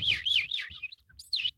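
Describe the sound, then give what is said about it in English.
A voice mimics morning birdsong, fairly loud, with a quick run of warbling, wavering whistled chirps, a brief pause, then one more short trill. “When you call the universe, I like to make like bird sounds.”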